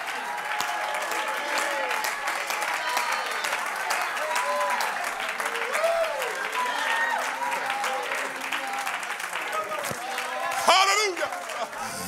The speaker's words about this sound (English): I wonder if I can get 25 people to leap to your feet, clap your hands, and praise him for the small victory.